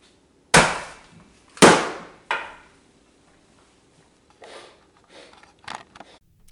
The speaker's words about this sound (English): I love the way you slammed the computer down. Such a drama queen.